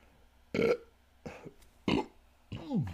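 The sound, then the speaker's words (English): Four short, throaty burps come in quick succession, the last one stretching into a low, descending croak; no one speaks. “And I will say, let me burp.”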